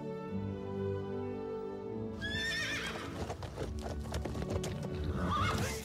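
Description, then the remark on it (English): A horse gives a loud, shrill whinny partway through, over a steady low rumble, while hooves clip-clop in quick, uneven beats through to the end. “Every horse is good for something.”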